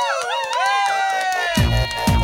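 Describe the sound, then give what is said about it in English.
A crowd cheers and whoops with rising and falling shouts, a round of applause for the person who censored a record, then bursts of louder, rougher noise break in toward the end, like applause swelling under the cheering. “Can we just have a round of applause for the guy whose job it was to censor that record?”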